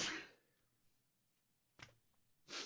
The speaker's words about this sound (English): When did this start? I mean, you weren't sneezing earlier.